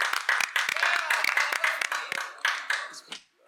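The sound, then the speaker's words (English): A quick burst of hand clapping from a few people congratulating someone on finishing a theater degree, sharp overlapping claps in a fast irregular rhythm, fairly loud, trailing off at the end. “Oh my god, wait, clap it up! Yeah, yeah. Clap it up for that.”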